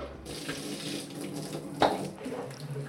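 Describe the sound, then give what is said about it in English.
A shower runs steadily onto a person standing in it wearing a Cleverhood Rover rain cape, a constant hiss of spraying water, broken once near the middle by a brief, sharp splash or knock. “yeah, I am standing in my shower.”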